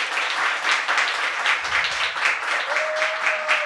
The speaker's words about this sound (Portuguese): Palmas mais uma vez